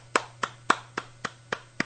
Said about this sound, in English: There you go. You have a little clap as well.